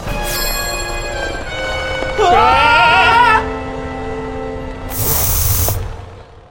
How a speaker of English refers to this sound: What was that? Was that axe body spray?